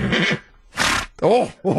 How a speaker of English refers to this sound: If you get it right, you will hear this horse. That is an excited horse. If you get it wrong, you will hear this horse.